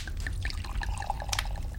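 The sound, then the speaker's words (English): Wine pours from a bottle into a cup, a steady splashing trickle with small bright plinks over a low rumble, ending in a brief sharper splash. “Radon pours for Merrin.”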